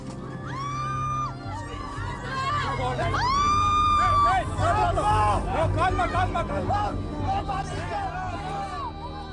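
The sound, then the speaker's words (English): A panicked crowd of passengers on a sinking ship screams and shouts over one another in the darkness, with high, wavering cries rising above a dense, continuous babble of frightened voices that stays loud throughout. “Shipwide panic, confusion, and chaos ensued. Hope quickly turned to fear, and in the darkness, people began screaming.”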